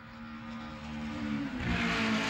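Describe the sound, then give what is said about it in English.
Buzzing kart engines in a Nintendo 64 racing video game whir and rev steadily, growing slightly louder as the vehicles circle around, a continuous mechanical drone with no talking. “Around goes a couple cars.”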